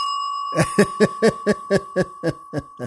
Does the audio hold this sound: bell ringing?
yes